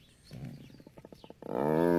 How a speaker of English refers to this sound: That's that cat's. This feels good purr, and it sounds like a fucking F-35 is about to take off.